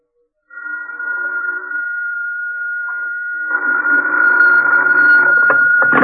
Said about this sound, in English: I was annoyed when my phone rang at 10 in the evening. I was already in bed.